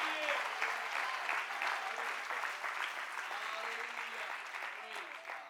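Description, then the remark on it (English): An audience claps steadily throughout, clapping their hands to the Lord, a dense, sustained wash of many hands, with a few voices faintly audible beneath the applause. “Clap your hands to the Lord.”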